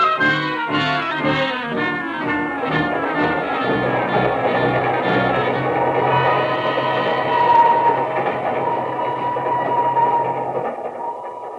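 A moving train to Kugama rumbles steadily, with rhythmic clacking pulses early on that blend into a continuous rolling roar, plus a faint whistle-like tone partway through. No voices are heard.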